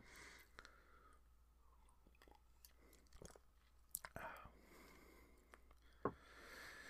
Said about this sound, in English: As I take a sip of tea.